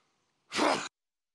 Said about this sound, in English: Sneezed.